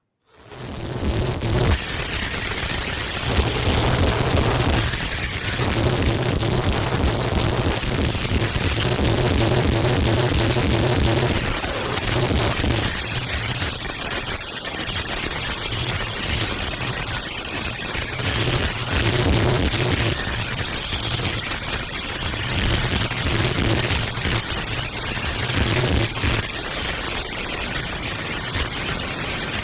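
Harsh Japanese noise music: a loud, relentless wall of crackling static and roaring distortion, with buzzing low drones and shifting screeching bursts that never let up. No voices.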